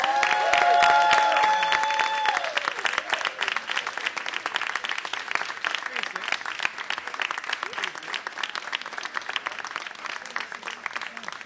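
A small crowd breaks into sustained applause to welcome a musician whose new album just debuted at number one: dense rapid clapping that swells at the start with a brief cheer or whistle, then holds steady at a lively, slightly lower level throughout.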